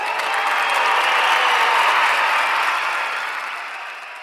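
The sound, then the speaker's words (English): A large crowd on a cannabis business expo floor in New Mexico applauds steadily, a dense wash of clapping that holds strong for several seconds before easing slightly toward the end, with no voices standing out. “Even the crowd loves it.”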